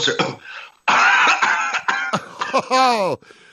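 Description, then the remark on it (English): A magician gives a few harsh coughs and throat-clearing bursts in quick succession as a deck of cards comes out of his mouth, followed by a brief vocal sound, with no clear speech. “If those of you aren't watching, I don't know how the hell he did this, but he just coughed and a deck of cards came out of his mouth.”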